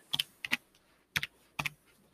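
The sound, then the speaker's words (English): Computer keyboard keys clack in quick pairs of crisp strokes, four little bursts spaced across a couple of seconds with brief pauses between, no voices. “You can listen to what's it called? The keyboard.”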